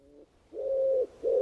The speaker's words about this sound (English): From the deepest wells of silence, the wood pigeon drew its bubble of sound.